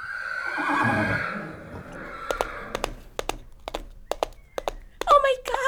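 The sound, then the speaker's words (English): A horse lets out a loud, wavering whinny that falls in pitch, followed by a series of sharp, hollow clip-clop knocks at an uneven pace and a brief squealing sound at the end. “Why don't you get up on the back of this horse?”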